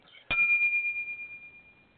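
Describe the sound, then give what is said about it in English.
A downloaded bell sound effect, rung each time a host says "I don't care": a single bright bell strike with a sharp attack, then a high, clear ring that shimmers and wavers as it slowly fades over about two seconds. “We need a bell to ring every time he says it.”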